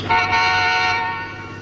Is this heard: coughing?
no